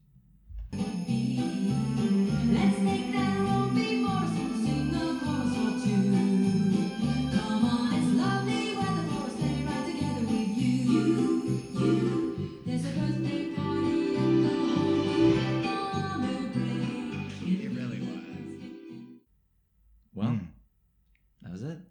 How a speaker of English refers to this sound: Talk about a holiday song. The Jingle Bells.